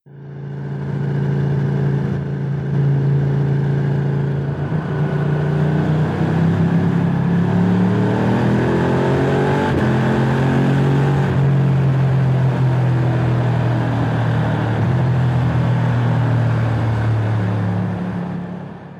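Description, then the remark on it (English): A motorcycle with a loud aftermarket exhaust revs and rumbles inside a tunnel, its deep engine note rising and falling with echoing reverberation, sustained for the whole stretch with no talking. “This might have an aftermarket can on it. I don't know if this is stock or not, but the guy is riding it in a tunnel.”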